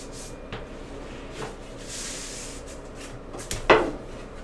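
A door swings shut with one solid thud near the end, preceded by soft rustling and handling noises; the door is being shut to keep smoke inside.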